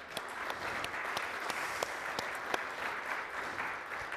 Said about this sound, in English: Happy Mother's Day, everybody. And from the bottom of my heart, in fact, if we could clap for all the moms.